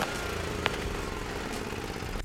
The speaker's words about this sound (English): That day was like most days in Southern California. Amazing. Beautiful blue skies were on the horizons. Birds chirping. And the outside of my bedroom window was the sound of lawnmowers starting up. Yep, this is California.